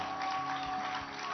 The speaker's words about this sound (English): I'd like you to give a hand clap for my daddy.